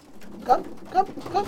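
Racing pigeons cooing in a large wooden loft in Cape Town, South Africa, three soft throaty coos spaced about half a second apart over a low, steady background murmur.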